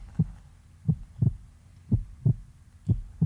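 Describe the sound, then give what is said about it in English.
A slow, steady heartbeat thuds alone, each beat a muffled low double thump, about four beats in just over three seconds with no voices. “I want to talk to you about the believer's heartbeat, your spiritual heartbeat.”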